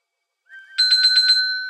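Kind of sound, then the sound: signal or alarm, telephone ringing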